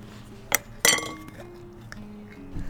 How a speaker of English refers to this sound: You think it's really gonna explode? I've had it out of the fridge for 24 hours. We twist the mason jar open, expectantly.